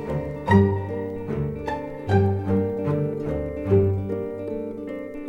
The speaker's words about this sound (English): Pizzicato violins and double bass.